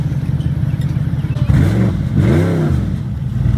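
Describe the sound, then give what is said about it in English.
A loud Audi R8 V8 engine idles with a deep, lumpy rumble, then blips the throttle twice, the revs sweeping up and falling back each time before settling into a steady burble. “No, that's from an Audi R8, but it is a V8 though.”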